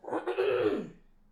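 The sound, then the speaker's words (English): A single rough, throaty cough, fairly loud, lasting under a second and trailing off into quiet, with no talking around it. “The coughing is not the serious stuff.”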